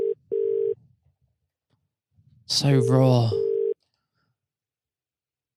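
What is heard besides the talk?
phone call ringing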